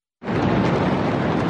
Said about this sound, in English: Small explosions thought to be from a fireworks storage were seen before the massive shockwave that swept through the capital, shattering the peace of a summer's afternoon.